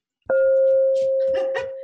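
A doorbell, rung for a chicken coop delivery, gives one long, steady electronic buzz that starts abruptly and holds for well over a second, fairly loud, with a voice briefly speaking over its end.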